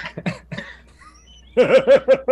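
A person coughs: a few rough, scattered coughs, a short pause, then a louder rhythmic run of about five voiced, hacking coughs.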